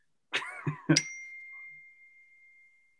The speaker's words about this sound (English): Sorry, my phone. Ding, ding. Someone's chimed in.